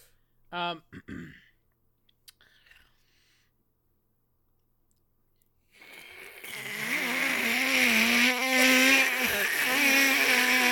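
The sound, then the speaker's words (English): A voice imitates a Raticate's cry: a brief squeaky yelp, a pause, then a long, loud, buzzy whine that wavers slightly in pitch and keeps going for about five seconds. “would you like to give your best Raticate impression?”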